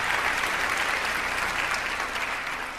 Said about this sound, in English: Is it me waiting for the applause to end, or is it me trying to remember the stories? You decide.